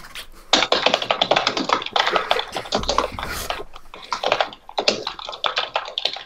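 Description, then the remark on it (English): Rapid, loud banging on a computer keyboard, a dense flurry of clattering keystrokes, briefly pausing before resuming just as frantically. “stop slamming your head off your keyboard, please.”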